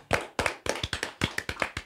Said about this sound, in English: Please clap with me.